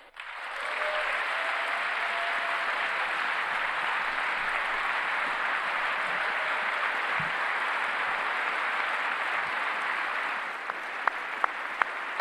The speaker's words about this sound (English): Clap, clap, clap, clap, clap, clap, clap, clap, clap, clap, clap. I did good.